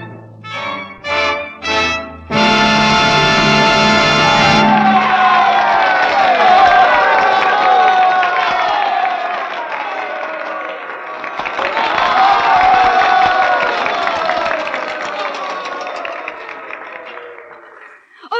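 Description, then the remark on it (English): A few short orchestral chords from the last scene of the opera Mazurka, by composer and conductor Mikhail Mikhailov, and a held final note give way to a large opera audience cheering and applauding loudly, the roar fading slightly and then swelling again before dying away. “Why, I hope for applause from them out there, but from you, my fellow singers.”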